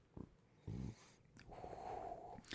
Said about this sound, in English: Give it a sniff first. I always do.